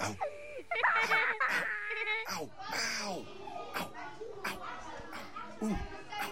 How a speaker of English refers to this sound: Look at those kids playing, aren't they cute?